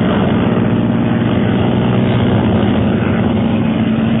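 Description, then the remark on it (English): A steady, loud propeller airplane engine drones continuously in flight, a thick low-pitched roar with a rough, pulsing texture and no voices. “Yes, and I shall give the signal to commence firing while we climb to a safer altitude. How can you signal? With the wings of my plane, like this.”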